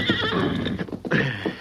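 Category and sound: animal, horse neighing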